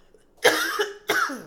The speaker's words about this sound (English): Excuse me. Why am I coughing?